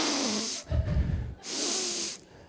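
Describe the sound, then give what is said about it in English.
Two sharp, airy sniffs drawn in through the nose, separated by a brief lower rush of breath, fairly loud with no talking; a person doing a sniff test while going around the coolers in a kitchen. “So I decide I'm going to do the sniff test.”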